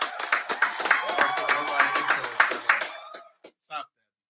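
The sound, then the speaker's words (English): Brisk applause from a small group, rapid overlapping claps with some voices mixed in, fading out after about three seconds into a few last scattered claps. “So without further ado, I want to give a round of applause for my brother”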